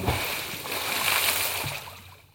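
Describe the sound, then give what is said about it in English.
A water splash sound effect standing in for cold water poured over someone: a brief, bright burst of sloshing, spattering water that swells and then fades out over about two seconds, with no voices. “You have like some sort of splash sound effect you can put in there?”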